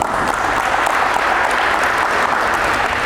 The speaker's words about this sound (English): You guys give Matt a round of applause.